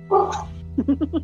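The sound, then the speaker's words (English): A dog gives one drawn-out bark, then a quick run of four short, sharp yips, fairly loud over a steady low background hum. “Oh, there's the code. Hi, doggy!”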